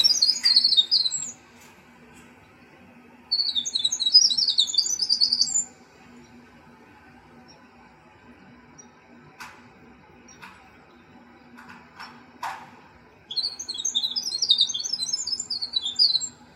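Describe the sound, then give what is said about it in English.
A winter wren pours out three long, rapid bursts of high, tumbling trills and chips, each lasting a couple of seconds, separated by quiet pauses with a few faint clicks in between. “The winter wren, one of the arrival.”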